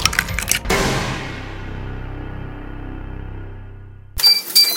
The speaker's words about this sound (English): That's not only the OptiGrill beep to say that food is cooking, it's also just a little something to get your attention